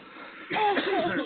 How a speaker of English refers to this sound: Oh, damn, we all cough.